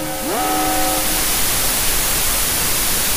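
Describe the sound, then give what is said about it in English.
A steady wash of loud static hiss fills the whole clip, opening with a brief rising electronic tone that fades into the noise, a censoring effect covering spoiler content. No one speaks. “If you just went static in your head for a little bit, that's because I fed all this stuff to the void fish.”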